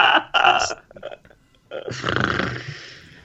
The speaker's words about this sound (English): This is my fucking chair. I need to WD-40 this thing.